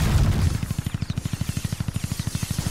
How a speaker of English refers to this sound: What the fuck was that? Was that gunshot? Was that gunfire? That was gunfire.